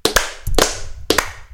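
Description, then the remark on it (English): Three sharp hand claps, evenly spaced roughly half a second apart, each a crisp bright smack with a slight doubled edge, with no talking around them. “So why don't we give him three claps?”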